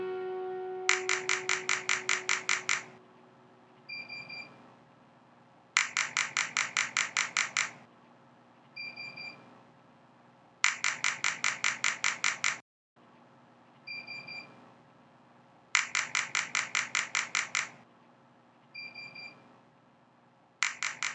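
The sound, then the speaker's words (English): Brain stimulation equipment used for repetitive transcranial stimulation treatment at the Temerty Center sounds off in repeated bursts of rapid, buzzing clicks, each train lasting about two seconds, with short beeps between them. The pattern stays loud and steady, with no talking. “That sound you can hear, that buzzing, beeping, clicking sound, that's the sound of science.”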